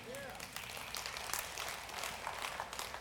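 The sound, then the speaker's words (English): A crowd claps steadily for about three seconds, a dense, even patter of many hands at moderate volume, with a brief vocal sound at the very start. “But we, yeah, you can clap for that.”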